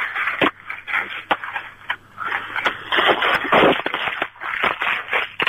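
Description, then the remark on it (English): Bubble wrap being crushed and popped, a dense stream of crackling snaps and crinkly rustling with a few sharper pops standing out, fairly loud and continuous with no voices. “Bubble wrap.”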